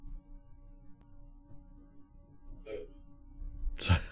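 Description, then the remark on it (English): A sick baby coughs twice in the background, first a short, muffled cough, then a louder, harsher one, over a low steady hum with no talking. “We got a sick baby, y'all. So, here's some coughing in the background, probably.”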